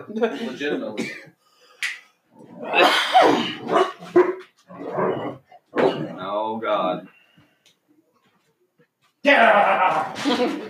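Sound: two dogs barking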